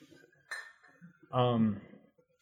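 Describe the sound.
Tiffany glassware clinks with a bright, ringing tap as Glenfiddich whisky is offered, followed by a loud burst of voice and a second faint clink at the end. Low murmuring and voices run underneath.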